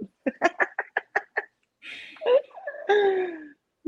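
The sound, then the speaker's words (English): A quick string of short breathy bursts, then a long drawn-out yawn, voiced and sliding downward in pitch as it trails off. “See the yawning coming in, girl.”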